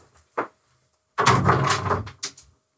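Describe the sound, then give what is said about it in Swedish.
A refrigerator door opens: a brief click, then a loud, rustling, rattling burst lasting under a second, followed by another sharp click and a soft thump. “Har ni sett när Ernst tar ut en lök ur kylskåpet?”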